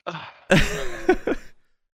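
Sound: sneeze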